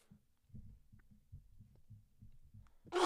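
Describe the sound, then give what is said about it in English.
A series of soft, low, muffled thumps in an uneven rhythm, ending in one sudden, loud, breathy sneeze burst. No one speaks. “I don't know what that was. I sneezed.”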